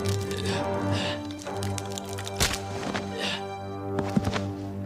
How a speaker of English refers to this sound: We'll cue up that neck snap again. Let's hear it.